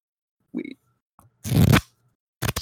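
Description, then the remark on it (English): Small objects being fiddled with on a desk: a few short bursts of crinkly, papery rustling and scraping, with a faint tick between them. The middle burst is the loudest and longest. No one speaks. “I have shit on my desk and I play with it and it shows up in the recording.”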